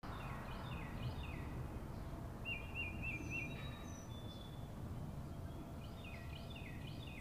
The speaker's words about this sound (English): What was making that sound? That's right! It was birds chirping!